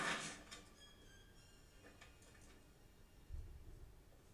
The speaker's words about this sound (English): When he slams the pointer down, you can hear the tip break off and bounce off the floor. I wonder if that was intentional.